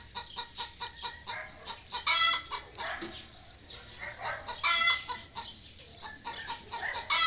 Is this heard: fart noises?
no